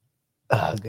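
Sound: suppressed burp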